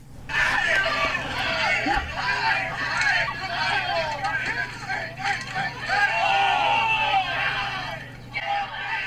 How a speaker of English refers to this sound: Lots of screaming and